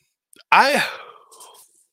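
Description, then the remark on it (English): A single yawn: a voiced, drawn-out tone that swells and falls, then trails off into a long breathy exhale. No one speaks. “Excuse me, as I got a little yawn in there.”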